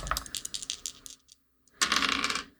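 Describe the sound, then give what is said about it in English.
Dice clatter across a hard tabletop in a rapid burst of clicks, pause briefly, then a second louder roll rattles and settles, crisp with no voices; dice rolled for an investigation check in a tabletop role-playing game. “I want you guys to roll me investigate a mystery. Oh, boy. Having dice would be helpful.”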